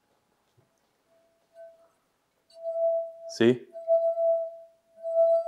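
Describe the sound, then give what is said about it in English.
A thin, non-crystal wine glass is tapped several times, each tap leaving a clear, sustained ringing tone, with a brief spoken word cutting in partway through. “Mom's wine glasses aren't crystal.”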